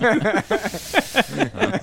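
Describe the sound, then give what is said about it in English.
Air escapes from a balloon in a loud, continuous squealing hiss whose pitch warbles up and down in quick wavering bursts for about two seconds, with no talking over it. “You guys like balloons?”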